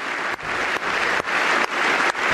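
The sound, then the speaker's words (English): A large crowd applauds loudly and steadily, the dense clapping swelling in a regular pulse about twice a second, with no voices audible over it. “He's still leading the clapping.”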